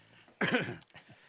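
A single harsh, rasping throat clearing bursts out loudly for about half a second, followed by a couple of softer, low guttural rumbles trailing off.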